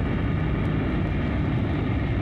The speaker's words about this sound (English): At the command of its Amazon mistress, an immeasurably powerful invisible plane zooms down from the sky, hovers briefly above her, dropping a rope ladder.